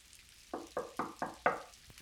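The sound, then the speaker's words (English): Five quick, evenly spaced knocks on a wooden door at the gate of a house, sharp, with the last rap a bit louder. No voices, just faint background hiss around them. “You are best to knock louder. What's he that knocks as he would be down the gate?”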